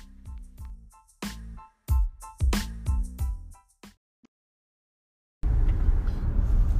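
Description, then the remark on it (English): A string of clicks and thumps inside a car, then a brief hush, before the steady low rumble of the car interior fills the space, loud and enveloping, with no one talking. “from her car, right to you.”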